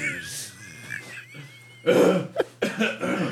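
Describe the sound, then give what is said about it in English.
A few loud coughs burst out in quick succession after a quieter stretch with faint background noise, each one harsh and breathy. “Cough.”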